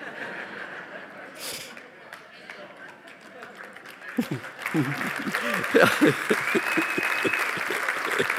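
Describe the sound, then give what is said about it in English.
A crowd applauds a preacher during a sermon in a steady, dense patter of clapping, and partway through laughter and chuckling voices rise over the continuing applause. “The things a guy has to do to get an applause, I tell you, I don't know.”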